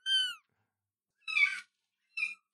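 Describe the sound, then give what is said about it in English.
A kitten on a kitten cam meows three times, short, high-pitched cries separated by pauses of silence, clear with no talking underneath. “there is a kitten cam set up.”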